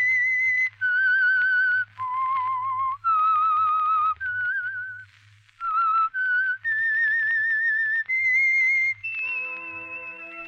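The whistled theme of the Signal Oil radio program The Whistler: a clear melody of sustained, wavering notes moving up and down in pitch, played alone over a low steady hum, ending with a brief tonal chord.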